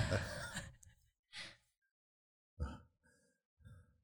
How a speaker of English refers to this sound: I don't know what else to do. Just breathe heavily.